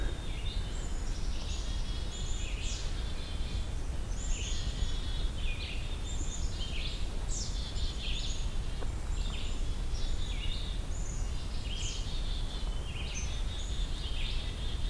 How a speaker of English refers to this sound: Hearing black-capped chickadee up ahead singing that whistle song. A lot of chickadee sounds too. The calls.